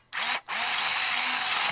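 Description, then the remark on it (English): An Olympus AFL Quick Flash compact camera's motor winds a roll of film with a high, buzzing whir: a short burst, a brief stop, then a steady drone that runs on without pause toward the end of the roll. No one speaks. “And it will carry on doing this all the way to the end of the roll.”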